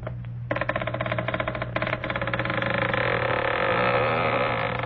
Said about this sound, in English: And now the door creaks open. Now, listen.